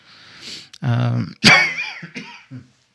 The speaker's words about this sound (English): Give me 1 second again, guys. Still trying to fight this cough.